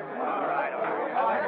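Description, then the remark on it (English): A restless crowd mills round the entrance of a police station on First Street, many voices blending into a dense, steady murmur of overlapping chatter with no single words standing out, holding at an even, fairly loud level throughout. “Crowds of imprudent people bear down on the police station, mill round the entrance on First Street.”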